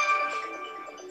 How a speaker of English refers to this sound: Sorry, now the phone's going, one of those days.